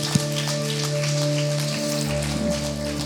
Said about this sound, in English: Now, one last thing. Can we clap? Because there was like two or three people that just said yes to Jesus. Come on, everybody. Come on.